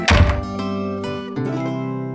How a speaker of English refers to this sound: Atticus can hear traffic and workers outside, and doors always opening and closing.